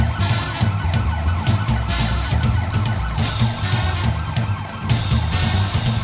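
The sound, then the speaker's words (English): Police sirens wail loudly and continuously over a thumping, busy band playing underneath as cops burst into a speakeasy, creating a dense, chaotic wall of sound with no talking. “Yeah, all hell breaks loose in the speakeasy and you hear the band playing and it's just kicking up in the sirens and everything.”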